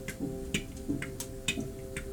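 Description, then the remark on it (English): A clock ticks steadily in a well-dressed parlor, its crisp clicks evenly spaced a bit faster than once per second, heard alone over a faint, constant low hum. “And you can hear the ticking of a clock.”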